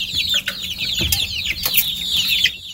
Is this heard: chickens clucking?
yes